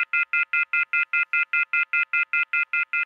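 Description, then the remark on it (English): A rapid, evenly spaced run of telephone keypad dialing tones as someone tries to place a call, about sixteen short beeps in three seconds, clear, with no voices. “But as he does, the phone service disappears.”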